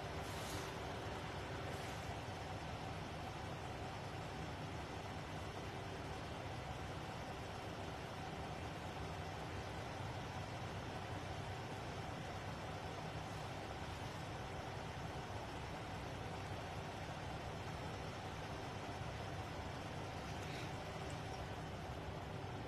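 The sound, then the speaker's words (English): Steady street traffic with idling car engines at Buttonwoods and Vera, where the street is blocked off, rescue crews are staging and traffic is being rerouted; a continuous low rumble and hum holding at an even loudness throughout, with no voices. “See how they're rerouting traffic.”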